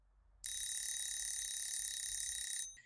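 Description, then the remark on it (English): A Pomodoro timer alarm rings continuously for about two seconds, a bright, high-pitched electronic bell-like tone with steady loudness that starts abruptly and fades at the end, with no voices. “One of my tips for working remotely is using what's called a Pomodoro timer. And you can just Google Pomodoro timer. And it's a timer that will make a noise after, I think it's usually a 45-minute period of time.”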